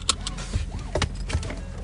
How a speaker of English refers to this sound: I'm putting on my seatbelt.